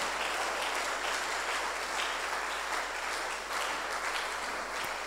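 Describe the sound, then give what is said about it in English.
A crowd claps steadily for about five seconds after a prayer, the clapping offered as a kind of giving; a dense, even wash of many hands with no clear individual beats and no voices standing out. “You can clap better.”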